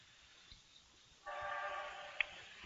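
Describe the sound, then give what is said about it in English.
A train in the background comes in partway through, a steady rumbling roar with a faint tonal whine that holds to the end. It sounds fairly soft, with no voices. “You sound like we got a train in the background.”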